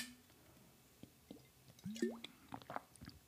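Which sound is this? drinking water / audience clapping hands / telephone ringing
drinking water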